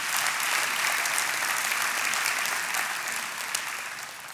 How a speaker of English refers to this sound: That's amazing. Give the Lord a hand clap on that.